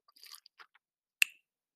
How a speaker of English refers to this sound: Sorry, I'm taking a drink of water. It takes a lot out of you when you're talking all the time.